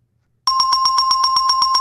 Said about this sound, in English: This is a new sponsor alert. Ring that bell